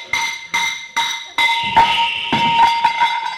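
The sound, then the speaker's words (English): A sledgehammer clangs against a metal water pipe under a house in a quick run of ringing strikes, each blow leaving a bright, sustained metallic ring that piles into a continuous clangor by the end. “you've hit the water pipe.”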